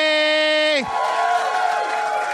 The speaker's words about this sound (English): Let's start clapping for my first guest. There's actually two of them,